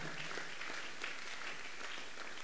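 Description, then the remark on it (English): A church audience applauds steadily, many hands clapping together in a dense, continuous patter with no single beat standing out, moderately loud throughout. “The one that is not clapping is not in the church yet.”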